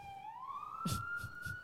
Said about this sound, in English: Ugh, let this siren go by.